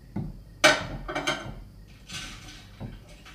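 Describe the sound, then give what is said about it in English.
Several clattering knocks of dishes being set down in a sink, with sharp bright clinks around the middle and a softer rattle later, moderately loud with no talking. “Don't worry, I'm just putting these in the sink.”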